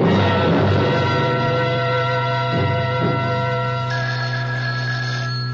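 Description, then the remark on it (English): A telephone rings with a steady, electronic warbling tone that carries on for several seconds, fairly loud, with no voices. “First of all, I've got to make a phone call.”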